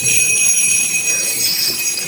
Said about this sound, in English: There's going to be a part where we sing Gloria. And when it's Gloria, I want you to ring those bells for all you're worth, okay?